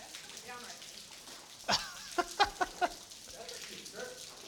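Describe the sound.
Heavy rain pours down in a steady, dense hiss, with a handful of sharp taps and splats cutting through midway and muffled voices talking faintly underneath.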